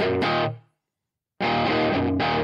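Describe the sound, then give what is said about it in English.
A distorted electric guitar plays a chord with a reverb tail that fades into silence, then the guitar resumes with a full, sustained distorted tone and washy ambience. No voices. “Yeah, it seems like a lot of reverb.”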